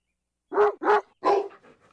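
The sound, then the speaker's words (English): A dog barks three times in quick, loud succession, then trails off into a few softer whimpering yelps. No one speaks. “Dad, I understand the silverware, but why the dog?”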